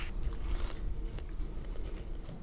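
Crunching as someone chews crispy edible crickets, a quick run of irregular, crackly bites over a low, steady background and no talking.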